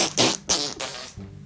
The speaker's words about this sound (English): Did you just fart in a cup? No.